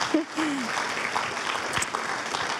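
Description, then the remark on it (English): A crowd applauds steadily at a church service after a video about Compassion child sponsorship, the dense clapping at moderate volume, with a brief voice-like tone near the start. “Yeah, I see a clap there. You can clap, that's fine.”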